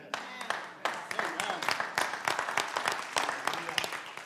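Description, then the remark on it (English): A crowd claps steadily, a dense patter of many overlapping hand claps at a fairly even level, with a few sharper claps standing out and some voices mixed in. “Now you clap, but I think some of you clap because you heard other people clapping.”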